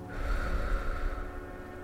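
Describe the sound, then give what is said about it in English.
A single deep belly breath during a breathing exercise, the belly expanding as air is drawn in and sinking as it is let out in one steady, airy rush, fairly loud, with no talking. “Breathe in. Expand your belly. Breathe out. Let your belly sink in.”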